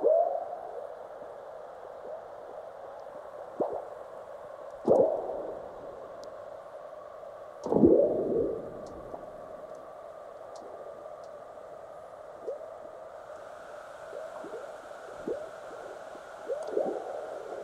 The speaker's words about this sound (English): The sounds come from seismic recording stations in North America and Central Asia. Frog-like burps you could hear are earthquakes, large ones followed by the chirps of aftershocks.